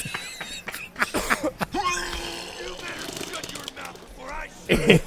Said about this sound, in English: I just cough on the fucking thing if you guys are going to complain anyway.